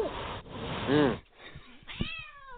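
A cat meows loudly, a drawn-out, wavering cry followed after a short pause by a second, rising meow, with no voices present.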